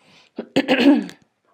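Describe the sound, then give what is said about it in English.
A person clears their throat once: a short rasp followed by a rougher, voiced scrape lasting about half a second, then quiet. A kale smoothie is tickling their throat. “Okay, let me clear my throat.”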